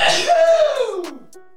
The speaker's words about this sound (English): I think, I got a sneeze building up on me here.